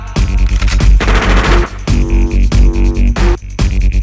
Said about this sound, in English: It's all about the gunshots.